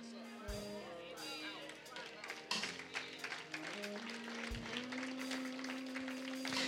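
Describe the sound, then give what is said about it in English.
A few scattered hand claps, sparse and uneven rather than full applause, over a steady sustained tone and some background murmur. “I got a smidgering of hand claps.”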